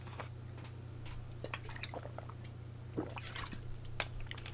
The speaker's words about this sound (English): But until then, excuse me, I got to take a sip of my soda. Notice I said soda, not beer.